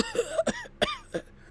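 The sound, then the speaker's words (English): A wounded man coughs up blood in a few harsh, strained bursts, fairly loud, with pained, groaning breaths between them, as a doctor treats his gushing wound. “She uses a phaser to shut a gushing wound and injects something into him as he coughs up blood.”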